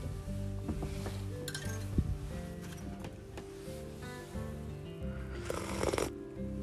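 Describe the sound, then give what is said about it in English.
Slurping sips of coffee from a mug with a light clink of the cup, repeated a few times over a steady low hum in the background; no one speaks. “Coffee cheers, my friends, around the world.”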